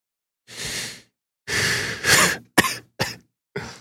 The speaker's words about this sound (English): It's hard on my lungs, though. Yeah, I know. You were saying that before. It makes me cough.